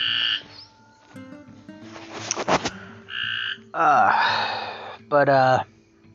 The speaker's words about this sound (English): I don't know if you guys can hear it, but there's a couple cats going at it out there. They are trying to beat each other up.